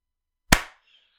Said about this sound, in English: Right, so buzz. We're on. I'll give a clap.